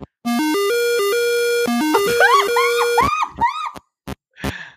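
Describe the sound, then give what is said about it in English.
Buzzy, retro electronic tones from an Atari video game: a stepped square-wave melody repeats twice, then gives way to quick rising chirps and bloops, ending in short bursts of harsh static-like noise. “I can't deny you this sweet Atari sound.”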